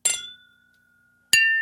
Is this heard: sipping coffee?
no